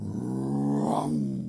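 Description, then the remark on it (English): A voice imitates a roaring bulldozer engine with a steady, low, gravelly growl, loud, held for about a second and a half with a slight swell in the middle. “It roared up with its big engine, came right, hurtling right towards them all.”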